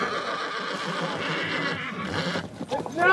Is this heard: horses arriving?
yes